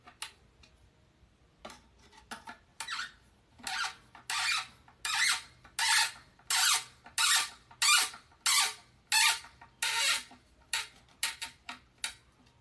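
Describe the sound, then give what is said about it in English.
A cabinet drawer squeaks again and again as it is slid in during furniture assembly, with a steady run of about fifteen short, harsh squeals, fairly loud, and no one speaking. “Squeaking. Why is it squeaking?”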